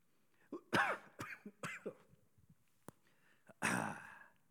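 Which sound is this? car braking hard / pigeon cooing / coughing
coughing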